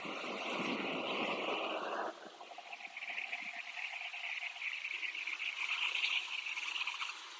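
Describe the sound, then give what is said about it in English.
A wave rushes ashore with a broad, hissing wash for about two seconds, then cuts off, leaving a quieter high chirring drone, like insects, in the background. “It's like the ocean's talking.”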